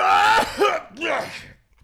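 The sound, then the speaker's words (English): A loud coughing fit: several harsh, raspy coughs in quick succession with throaty bursts, fading out near the end. “Sorry, I just had a coughing fit.”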